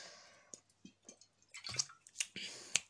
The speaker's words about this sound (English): Yes, guys, I was gulping a bit of water.